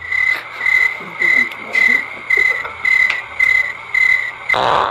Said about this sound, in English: I think there's some people, some crickets or something in here. There are crickets, actually. They're right here.